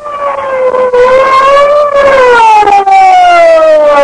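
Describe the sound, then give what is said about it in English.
A big police car's siren wails loudly, its steady tone sliding slowly up and then down over a few seconds, as the car comes to a halt at the edge of a barricade around a club building. No voices are present. “The big police car came to a halt at the edge of a live barricade thrown around the Skylight Club building.”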